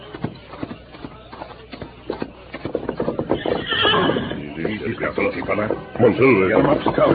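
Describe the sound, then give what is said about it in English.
A horse's hooves clip-clop in a steady rhythm, then the horse lets out loud, drawn-out whinnies and neighs as the hoofbeats continue underneath. “Let's get the horses and follow them.”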